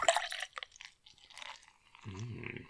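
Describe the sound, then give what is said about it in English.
Liquid sounds of a beer being poured and dripping, with splashy bursts at the start and scattered drips after, ending in a brief low gurgling tone. “is now pouring a beer.”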